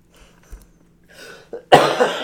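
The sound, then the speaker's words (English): A few short, nervous coughs, starting soft and building to a louder, harsher burst at the end, with no talking. “Oh, see? Nervous coughs.”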